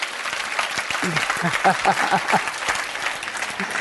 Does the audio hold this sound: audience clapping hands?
yes